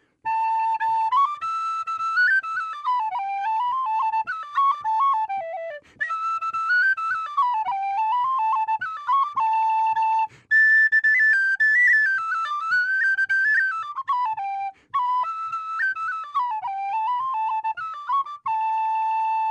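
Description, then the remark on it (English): A professional tin whistle player plays a lively traditional Irish tune alone, bright, with quick ornamented runs, grace notes and phrases separated by brief pauses for breath; the tune comes from a whistle player from Doolin in County Clare. “You're a professional tin whistle player. Show us what the whistle sounds like.”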